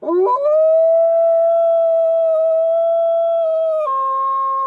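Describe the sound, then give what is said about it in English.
A long, sustained howl rises sharply at the start, holds a steady tone for several seconds, then drops slightly in pitch near the end, loud with no other sounds, voiced by a person imitating a wolf. “And then you hear a howl.”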